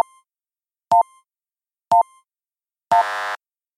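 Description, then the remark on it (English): Beeping countdown music introducing a top 10 countdown: three short, evenly spaced electronic beeps about a second apart, followed by a longer, richer buzzing tone that ends the countdown. Clear, with no voices. “Hit that beeping countdown music, because here are the top 10 moments from Rank Rangers In Search SEO Podcast in 2019.”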